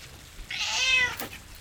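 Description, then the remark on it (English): An angry cat lets out a single drawn-out, wavering meow lasting about half a second, fairly loud, with nothing else around it. “The cats went from puzzled to furious.”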